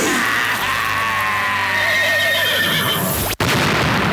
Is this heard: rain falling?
no